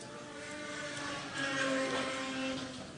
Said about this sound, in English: We see Shilun Wu there, the loudest car ever.